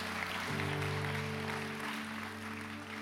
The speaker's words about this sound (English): Come on, if you're going to clap, give him a good hand clap today. Feel his presence.